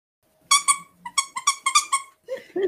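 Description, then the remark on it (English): Two excited dogs, Tara and Bear, bark over their newly arrived BarkBox in a quick, high-pitched burst of about eight sharp, loud yaps, with no talking over them. “As you can tell, Tara and Bear got their new bark box in, and they're extremely excited.”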